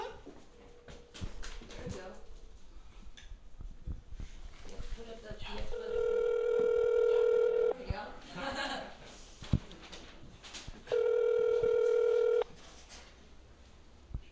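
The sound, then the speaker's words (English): Two long, steady electronic ringback tones from a new phone on speakerphone calling the speaker's parent, separated by a pause, with softer voices and room noise around them. “Speakerphone. Oops. This is a new phone that I don't know how to use.”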